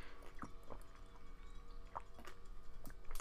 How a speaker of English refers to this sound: Hold on, I'm gonna take a little sippy sip.